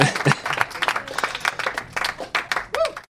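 A crowd applauds with dense, overlapping claps filling the whole stretch, steady and moderately loud, with a few voices and murmurs mixed in.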